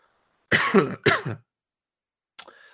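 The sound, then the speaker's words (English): Two loud, harsh coughs in quick succession into an unmuted microphone, followed by a pause and then a brief, fainter rasp. “And I totally forgot to mute my mic when I just coughed there.”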